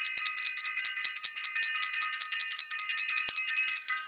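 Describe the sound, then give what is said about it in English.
A steady, bright ringing bell tone holds for about four seconds without fading, its layered high overtones shimmering evenly, with a few faint clicks underneath and no voices. “Ring the bell for self-invested and for everyone who is self-invested.”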